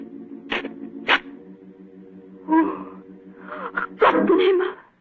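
A match is struck in the dark. Two quick, sharp scratches against a striker, then a louder rasping strike that catches and flares into a brief hissing fizz, over a low steady hum.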